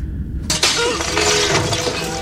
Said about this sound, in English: Don't give the ladies anything to do but break pots on people's heads.